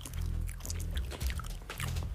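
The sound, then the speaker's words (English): Wet gum chewing with a steady run of smacking, clicking mouth sounds over a low hum, heard alone without any talking. “Hope you're enjoying chewing this gum with me.”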